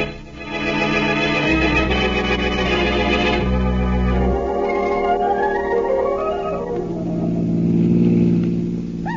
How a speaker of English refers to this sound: Nice afternoon for a ride, isn't it, Blackie? Yes, in a car.